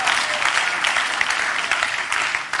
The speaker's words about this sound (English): He came into the game for us. Somebody please clap that he came into the game for us.